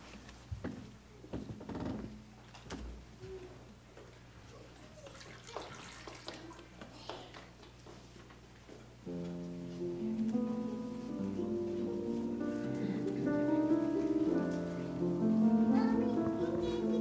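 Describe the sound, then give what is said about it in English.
Water pours steadily into a container, starting with splashy gurgles and settling into a continuous stream whose tone rises as the vessel fills. Fairly loud, with no talking. “I'm pouring water in honor of those people who risk being jailed for bringing water to the border and leaving gallons of water where they know people might die.”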